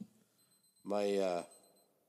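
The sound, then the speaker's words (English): A single short electronic alert from a watch signalling an incoming text message, a bright, buzzy tone lasting about half a second, loud against a quiet background. “It's my watch. It beeps when I get a text message.”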